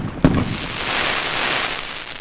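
A single sharp firework bang goes off, followed by a sustained hissing crackle that fills the rest of the moment, loud, with no voices.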